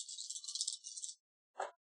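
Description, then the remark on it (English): Five dice rolled for a resources roll in a tabletop game rattle steadily for about a second, a dry, bright clatter, then a pause before one short, fuller clack as they land. No voices. “go ahead and give me a resources roll +2. So 5 dice.”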